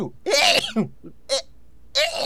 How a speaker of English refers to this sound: Yeah, sorry, I had to sneeze. It's dusty in my house and pollen's out.